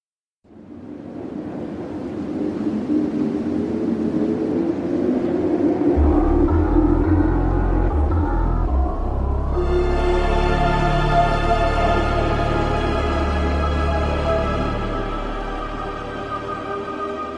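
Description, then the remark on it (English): A whooshing, wind-like wash of noise opens a soundtrack piece based on Monument Valley, joined by a deep sustained drone and then eerie held tones and chord sequences layered above, slow and ambient with hardly any percussion and no voices. “Wind effects, drones, eerie chord sequences, hardly any percussion or upbeat melodies.”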